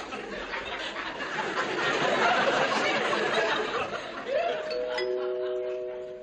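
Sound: doorbell ringing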